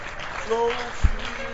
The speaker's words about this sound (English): Come. Oh, your clapping can be better. And carry them with a clap.